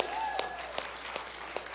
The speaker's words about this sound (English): Can we just give Jesus a shout and a clap again?